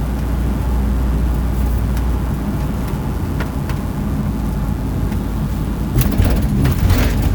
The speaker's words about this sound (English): Everybody's going so slow. Got a New Jersey Transit bus scraping all over left and right.